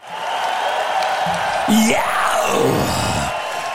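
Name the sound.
crowd cheering and whooping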